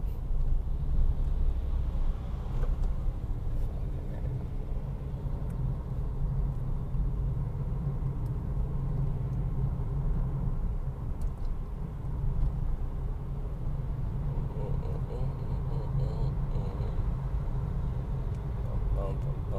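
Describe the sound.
A steady low rumble of a car driving along a road in traffic as it enters Orange County, with engine and tire noise droning continuously for the whole stretch while a voice murmurs faintly underneath.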